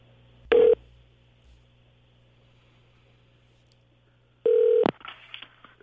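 Two short, bright telephone dialing tones from a phone in a studio sound about four seconds apart, with a faint low hum filling the quiet gap between them; no one speaks.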